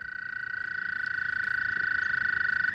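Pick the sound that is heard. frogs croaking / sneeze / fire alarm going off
frogs croaking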